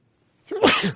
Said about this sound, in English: And the sneeze had to happen. I just never know when it's going to happen.